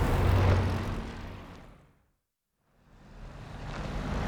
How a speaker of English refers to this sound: I'm currently on what you'd call the median strip here. I got cars heading east on one side, cars heading west on the other, and I'm pretty much stuck in the middle.